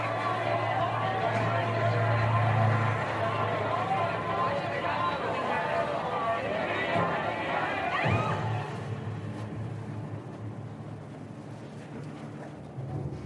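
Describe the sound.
A large protest crowd facing the Chicago police chants the slogan "the whole world is watching" in a loud, dense roar of many voices. A sharp thud cuts through partway, and the crowd noise then drops to a lower, rougher murmur.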